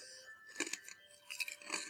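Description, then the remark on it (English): Crisp crunching as people munch on crunchy skinny sticks snacks, with a few distinct bites breaking into irregular chewing crunches over quiet room tone. “Listeners, you'll have to forgive us for munching on the skinny sticks.”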